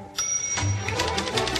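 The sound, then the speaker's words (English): Vigorous typing on a keyboard with music playing: a rapid, steady run of sharp clicking keystrokes over a faint sustained tone in the background. “Why are you typing vigorously with music playing?”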